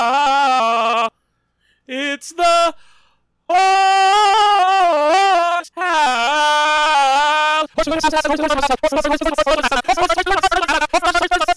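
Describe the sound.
A 2007 internet meme song plays loudly: a high, wavering, bleat-like sung voice comes in short bursts with pauses, then continues over a dense, driving instrumental backing.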